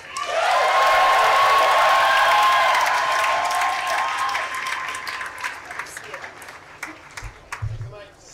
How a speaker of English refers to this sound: Please give it a round of applause for Sarah.